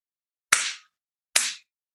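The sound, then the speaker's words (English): Two sharp hand claps, a little under a second apart, each a bright, loud smack with a short ringing tail, and silence around them. “He's done the clap himself.”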